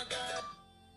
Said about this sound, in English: Oh, there's the ringtone. Hold on 1 second.